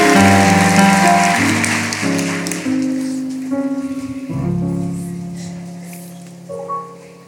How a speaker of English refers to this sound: Amen. Come on, give the Lord a hand clap of praise as you take your seat.